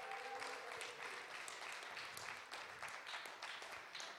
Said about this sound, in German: Dankeschön für die Mitarbeit. Das war toll, dass ihr mir geholfen habt. Gebt einen Applaus.